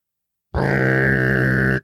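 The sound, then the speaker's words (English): A person vocally imitates a large animal such as a hippopotamus, rhinoceros or elephant breaking wind: one sustained, low, buzzing raspberry-like blast lasting just over a second, loud and steady, then cutting off abruptly. “Like, I don't know if you've ever gone to the zoo and happened to hear when a hippopotamus or a rhinoceros or an elephant kind of toot a little bit.”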